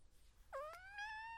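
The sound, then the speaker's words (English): A male cat lets out one drawn-out, mournful wail that starts abruptly and slowly rises in pitch, with nobody speaking over it. “Now he just sounds sad.”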